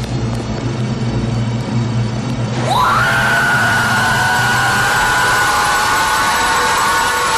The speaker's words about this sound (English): shrill and a mechanical scream that alerts the other pod people to the presence of the human being